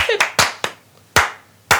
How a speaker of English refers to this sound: Clap properly.